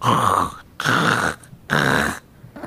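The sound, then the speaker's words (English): A voice imitates a jaguar's growl: three harsh, rasping pulses in a steady rhythm with short pauses between them, loud, with no other talk. “They have a curious growl that's sort of like a...”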